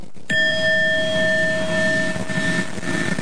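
A single bell is struck once and left to ring at a vigil for slain students at the University of Idaho Stadium in Moscow, Idaho, on a Wednesday night. Its clear metallic tone sustains and slowly fades over a low murmur of open-air background noise.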